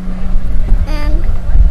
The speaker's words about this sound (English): Riding tractor. You're riding the tractor? Yeah. Is it going vroom vroom? Yeah.